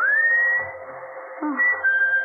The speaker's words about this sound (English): …'s whistling for you.